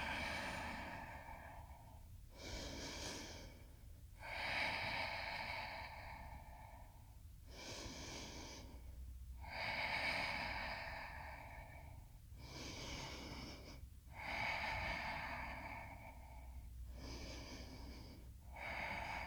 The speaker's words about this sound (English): Flow through to downward dog. Pause and breathe, 5 deep breaths.